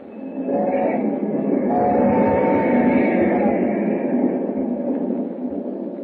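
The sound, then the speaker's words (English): A train roars steadily along the tracks into the night, a loud continuous rumble with rattling and clattering layered on top, swelling slightly after the first second and holding for several seconds. “As the train roars into the night, he and Hu Ling talk softly.”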